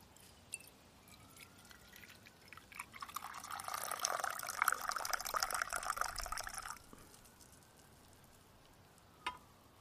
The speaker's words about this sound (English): Let me rinse a little bit the cup.